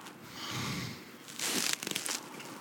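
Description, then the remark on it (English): Crunching of someone chewing a crunchy pretzel, a soft grinding start followed by a run of sharper, irregular crackly bites, with no talking. “That pretzel took a long chew.”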